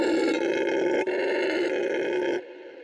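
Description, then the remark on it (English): A howler monkey's deep, sustained roaring call rumbles loudly and steadily for over two seconds before cutting off into a quieter, hollow tail. No talking is heard. “You know, howler monkey, a powerful sound.”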